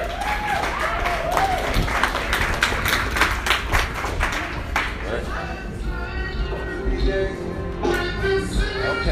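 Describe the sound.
An audience claps loudly for several seconds for a comedian being introduced: a dense, steady wash of many hands, which thins out toward the end as voices and a few whoops come through.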